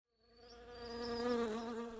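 Honey bees in a bee yard buzz in a steady, droning hum that swells in over the first moment and holds loud, with a low rich tone and wavering overtones. No one speaks.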